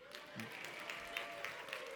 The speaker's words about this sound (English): Okay? Now you can clap.